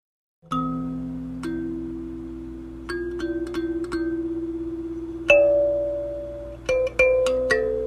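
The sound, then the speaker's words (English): A mbira thumb piano plays a slow, sparse melody of plucked metallic notes that ring and sustain, clear, with a few quick clusters of notes near the end and no voices. “It sounds, in a way, similar to wind chimes. It's melodic, and it's got a melodic sound that floats through the air.”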